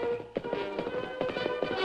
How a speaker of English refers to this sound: The Lone Ranger and Silver raced across the plains after the gray horse.